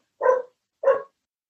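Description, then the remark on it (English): Two clear dog barks in the background, evenly spaced about half a second apart, fairly loud with silence between them and no talking. “Dog is having a time. That's Granger in the background.”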